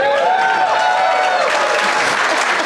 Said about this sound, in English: Don't cheer too much. We got to cut all this out before we release the episode.